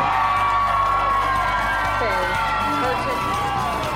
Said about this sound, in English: Ladies and gentlemen, big round of applause. This is Miss Ellie.